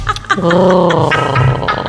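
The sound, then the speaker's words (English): A human voice, of someone with a sinus infection, imitates a growl, producing a sustained, gurgly, rumbling tone that wavers in pitch for about a second and a half, fairly loud and with no other talk. “This is my growl.”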